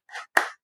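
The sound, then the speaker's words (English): A few slow, separate hand claps, each a sharp burst with a short ringing tail, spaced unevenly with no voices. “I'm just clapping. I'm applauding.”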